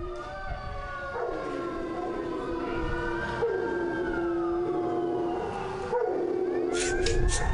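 A dog howls in long, wavering wails that rise and fall, loud, with overlapping drawn-out notes filling the whole stretch and no talking.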